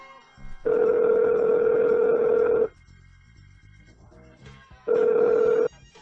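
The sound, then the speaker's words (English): A phone line's ringback tone heard on an outgoing call to a prostitute: a steady buzzing ring for about two seconds, a pause with faint line hiss, then the start of the next ring. “It's ringing.”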